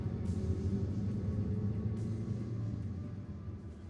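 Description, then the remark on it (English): A soft, low rumble of distant thunder rolls on steadily, a deep continuous murmur that swells slightly and fades a little toward the end, with no voices present. “A storm threatened outside, the soft rumble of thunder growing in the distance.”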